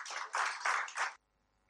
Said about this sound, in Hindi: आप सभी से अनुरोध करता हूं कि इनके इस अथक प्रयास के लिए तालियों से एक बार उनका स्वागत कीजिए।